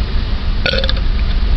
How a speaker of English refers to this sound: And he burps up a little bit of that butt chaff tea. Yeah. A little butt chug tea burp.